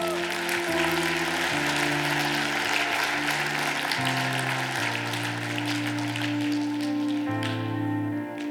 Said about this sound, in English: Come on, let's clap.